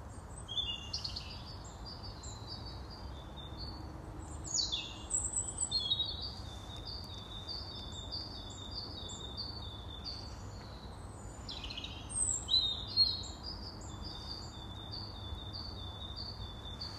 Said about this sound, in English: Yes, I'm standing in the street, listening to the birds.